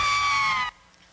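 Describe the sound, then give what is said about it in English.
A crowd of riders strapped in together on an amusement ride screams, a loud, high-pitched burst held for under a second before it cuts off abruptly into near silence. “We're all strapped in together, and we're probably all going to die. But there's laughter and screams all on the same ride.”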